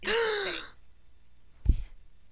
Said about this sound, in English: Don't gasp.